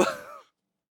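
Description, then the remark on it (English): A short, breathy yawn from a single voice, fairly loud, trailing off with a falling tone after about half a second and followed by silence. “This will be good for the yawn compilation of this episode.”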